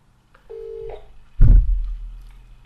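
A single short electronic telephone dialing tone sounds clear before a phone call, then a loud, booming thud follows and fades out, with no voices present.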